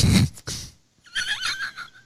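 A horse neighs: a breathy snort-like burst, a brief pause, then a long, quavering whinny that wavers up and down before fading out. No one speaks.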